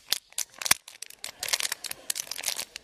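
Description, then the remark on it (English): An empty plastic water bottle is crushed and twisted, giving a burst of sharp, crackling crinkles and pops that come in irregular clusters for a few seconds, with no talking. “I have a habit that when I'm done with the bottle of water, I'll just hit her and do this.”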